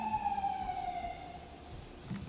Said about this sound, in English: The sirens feel like the thunder of this episode.